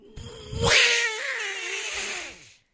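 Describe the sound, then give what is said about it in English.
A person voices a long, drawn-out cat yowl, a single loud wavering meow-like cry lasting a couple of seconds that rises, holds, then fades, convincingly mimicking a large cat. “Oh, showing like off your cat sound. Yeah, big cat.”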